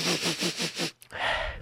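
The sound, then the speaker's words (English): A voice imitates a lion sniffing: about five quick, rhythmic nasal sniffs in a row, then a brief pause and a longer breathy exhale, clear with no talking. “Then he started to sniff with his nose.”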